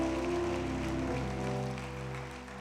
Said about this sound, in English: If you believe that and you're with me, you got to say amen right there, and you got to clap your hands, and you got to shout to God.